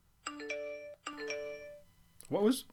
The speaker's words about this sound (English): Did you seriously not turn your phone off, dude? I thought I did. Guys. We appear to have gotten a message from the anonymous Draft the Universe commissioner.